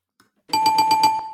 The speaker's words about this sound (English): The answer was 28, and I was still close enough to ring the bell.